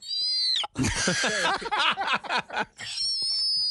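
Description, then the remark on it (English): A person vocally imitates a hawk's call: a high, thin screech at the start and end, with a harsh, rasping, warbling cry in between, loud. “Any birds of prey? An eagle, a hawk, anything like that? A hawk?”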